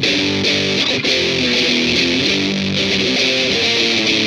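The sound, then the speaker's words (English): A heavily distorted electric guitar, run through an MXR distortion and a Distortion Plus pedal blended with a Greenizer pedal, plays a sustained, chord-driven riff with a thick, fuzzy low-mid tone and bright gritty upper harmonics, loud and continuous throughout. “But when it's mixed with that, with the, when I mix it, the MXR and the Distortion Plus with the Greenizer.”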